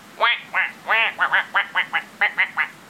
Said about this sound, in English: Come on, little duck.